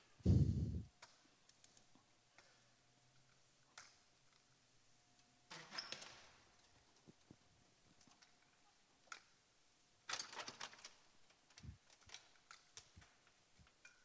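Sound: door being shut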